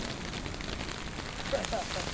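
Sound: water spraying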